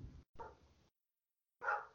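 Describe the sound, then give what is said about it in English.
A very worked-up dog barks in a few separate bursts, the middle one drawn out and the last one sharp, fairly quiet, with silent gaps between and no talking. “My dog is very worked up.”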